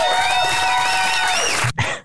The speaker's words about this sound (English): So it seems, I don't have my applause meter out, but it seems like the crowd is mostly there for not Joe Matarese.